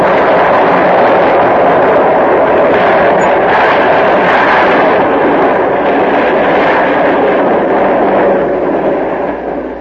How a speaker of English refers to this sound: I must have reacted purely instinctively, shoved hard on the accelerator, but by the time that explosion really took hold, I was almost past it.